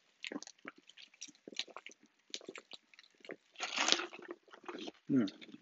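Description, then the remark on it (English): Wet mouth noises of someone drinking water: a run of small sips and clicks, a louder slurping gulp midway, then a deeper swallow near the end, with no talking. “My apologies for the silence. As always, drinking some water.”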